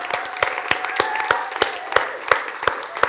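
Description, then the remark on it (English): An audience at God First church applauds church members, with many hands clapping in a steady, dense patter at moderate volume and a few sharper claps standing out, without any speech. “So let's give these people, these guys, a round of applause, yeah?”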